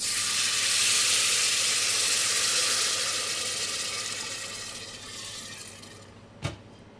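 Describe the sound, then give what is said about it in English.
Steady, loud sizzling of light-brown onions with a noodle seasoning packet added, frying in a pan, a continuous hiss that eases slightly over time, ending with a brief sharp clink of a utensil against the pan. “Then once the onions has a nice light brown color, just add the seasoning packet in. Cook it for like 30 seconds to a minute”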